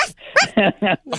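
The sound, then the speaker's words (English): A person imitates a dog barking: about five short, voiced woofs in quick succession, fairly loud, with no other talking. “So now I just bark with him.”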